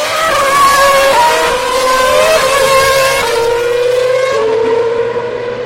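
Several race car engines scream loudly and continuously, their high whining pitch sliding and climbing as they power out of a corner, with no talking over them.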